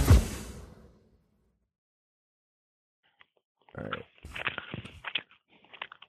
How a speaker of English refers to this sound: What are you chewing on? Oh, I'll get rid of that. I didn't know you could hear that.